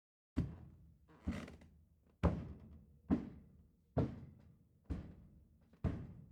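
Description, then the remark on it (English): Seven heavy, thudding footsteps fall at a slow, steady pace, each a dull low impact with a short fading tail, and no voices over them. “And then she hears a creak. What sounds like footsteps.”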